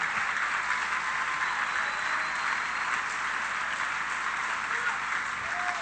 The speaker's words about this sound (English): somebody give God a hand clap or praise.